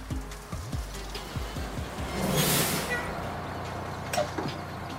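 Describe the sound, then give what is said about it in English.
A bus bound for a convent pulls up with a low, uneven engine rumble, then lets out a loud, sustained hiss of air brakes before its doors clunk open, with no talking. “Is this the bus that takes you to the Convent of las Hermanas de la Santa Misericordia de Jesucristo Nuestro Señor y Esperanza Eterna Santificado sea su...”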